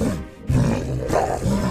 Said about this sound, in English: And as you guys do this, you hear a sudden commotion around the corner. The clinking of armor, the drawing of weapons, and the distinct voices of orcs.